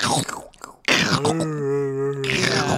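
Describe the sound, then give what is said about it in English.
A person vocally imitates the crunchy sound effect of a Sasquatch eating people in a film: rough, noisy crunching bursts, then a drawn-out groaning, moan-like tone, fairly loud, ending in more gritty chewing noises. “Mimes like eating them, but with just like that really crunchy sound effect.”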